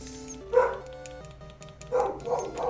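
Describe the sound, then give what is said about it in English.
A dog barks once, then after a pause lets out a quick cluster of barks, moderately loud, over a faint steady background hum with no talking. “She just walks outside sometimes and just starts barking at shit.”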